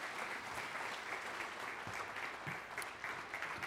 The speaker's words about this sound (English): And so would you help me give a warm round of applause